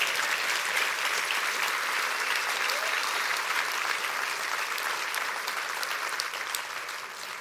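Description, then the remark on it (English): An audience at a sermon claps their hands together in steady, sustained applause, a dense wash of many overlapping claps that holds at a fairly even loudness before easing slightly toward the end. “Why don't we just clap our hands and say amen to that right there?”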